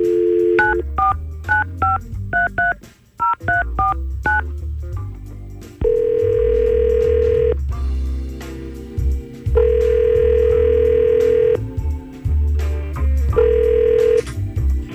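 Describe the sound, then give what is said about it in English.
A rapid run of telephone keypad tones dials a number to phone a guest on a radio show, followed by a repeating ringback tone sounding in long, evenly spaced bursts. Clear, with no talking. “We're going to try to call her and see what's going on.”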